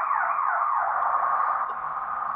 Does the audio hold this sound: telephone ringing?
no